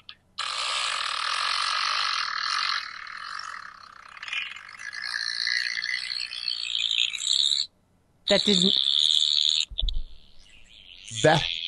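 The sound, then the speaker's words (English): A long, squeaky fart rasps and sputters for about seven seconds, shifting in pitch, then stops briefly before a few shorter, sharper blasts follow. “That did not come out of your ass”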